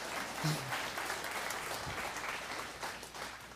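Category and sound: crowd, audience clapping and applauding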